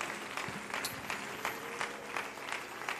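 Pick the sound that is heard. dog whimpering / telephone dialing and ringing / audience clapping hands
audience clapping hands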